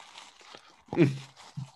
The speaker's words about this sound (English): He heard you munching over there. No, I got this from the liquor store, bro.